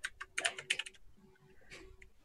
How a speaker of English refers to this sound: Okay. Here, let me roll some dice here to see what time it is. See if you're lucky.